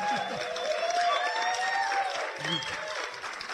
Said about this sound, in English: All right, now just to prove that we're here at Trinity Cinestudio, how about some applause from our enormous audience?